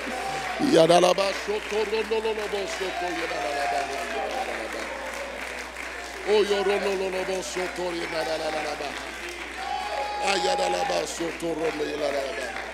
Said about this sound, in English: Clap your hands one more time. Glory to God. Come on and join that clapping with a shout of praise unto God.